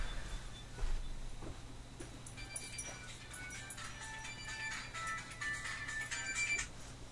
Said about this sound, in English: What the fuck is that? Is that my phone? Is that what my phone does? Sorry, I just got a new phone. I gotta check this.